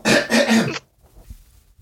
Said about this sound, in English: I was like, I may have coughed. I probably coughed. I'm sorry.